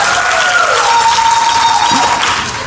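A live crowd breaks into sustained applause and cheering, dense clapping filling the space at a steady loud level with a few whistles rising above it, easing slightly at the end.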